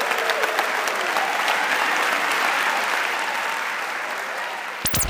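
A sustained round of audience applause, dense and steady clapping from a sizable crowd, holding at a fairly loud level for several seconds before a brief sharp sound cuts in at the end.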